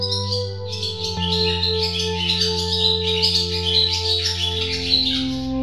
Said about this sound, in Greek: Επίσης την άνοιξη έρχονται τα αποδυνητικά πουλιά και τα τιτιβίσματα των χελιδονιών ακούγονται στον ουρανό.